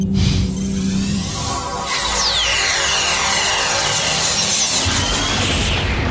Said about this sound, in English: That was a loud explosion. Oh, it got louder.